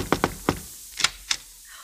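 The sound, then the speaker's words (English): Knocking on the door of an aunt's home in Paris: a quick group of three raps, then two sharper, brighter knocks after a short pause, with no one speaking. “And when we got to Paris, I could hardly wait to get to her place and knock on the door.”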